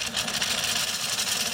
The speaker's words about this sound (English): This is the water currently coming from my sink faucet. With a sink full of dishes, the water stopped running altogether.